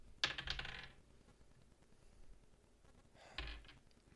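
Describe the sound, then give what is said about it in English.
Two separate bursts of a 20-sided die clattering and rolling across a hard tabletop, rolled twice for an attack: one at the start, another after a few seconds of quiet, landing on 4 and 3. No one speaks. “Are you sure that this is a goddamn 20-sided dice?”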